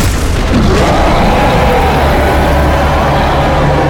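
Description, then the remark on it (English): An enormous purple worm bursting vertically out of the sand and into the air near the center of a town: a loud, sustained roaring rumble with heavy low-end churning and gritty hiss, holding steady for several seconds with no voices. “As near the center of town, you see this enormous purple worm burst vertically out of the sand and into the air.”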